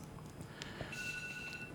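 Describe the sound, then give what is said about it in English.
A phone alarm sounds partway through a sermon, a steady high-pitched electronic tone with a faint higher overtone, fairly quiet over a low background rumble. “Someone's alarm's telling me my sermon is over.”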